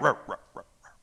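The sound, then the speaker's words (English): A human voice imitates a big Great Dane's deep barking: four quick, booming woofs that fade in strength, the first loudest and the last soft and muffled, with no other talk. “And then the Great Dane.”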